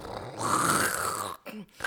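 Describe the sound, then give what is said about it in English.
A person imitates a man's snore with a drawn-out, rough, guttural rasp lasting over a second, followed by a brief breathy snort and a short trailing grunt, fairly loud. “Like, okay, so how can you mimic, like, imitate what his snore sounds like?”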